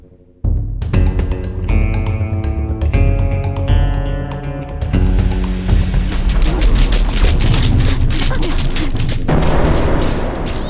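The first cannon is blown apart in a loud explosion, with deep booms and a run of crackling, crashing bursts rolling on for several seconds over sustained tonal sound.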